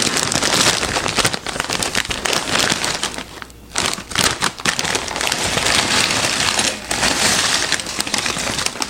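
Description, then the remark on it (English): Big, oversized chips pour from a bag onto a plate in a steady, dense rattle of crisp clattering and bag crinkling, loud throughout with a brief lull midway, and no one speaking. “But let's pour it out on a plate so you can see it, and then give it a taste test on camera.”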